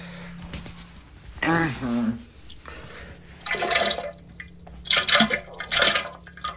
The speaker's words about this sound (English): It's all water.